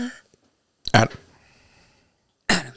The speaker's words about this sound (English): Sounds like a little tiny cough.